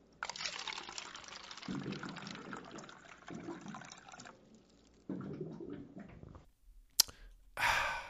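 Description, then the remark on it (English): Water glugs and gurgles as it pours from a cooler jug, with bubbly bursts and splashing in several uneven waves, ending in a sharp click and a brief rush of bubbling. “All right, y'all, you know what that sound means. It's time for this week's water cooler facts.”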